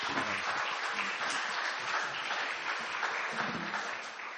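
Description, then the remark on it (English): A crowd claps steadily for several seconds, a dense, even wash of many hands with no voices rising above it. “Let's give these guys some applause here.”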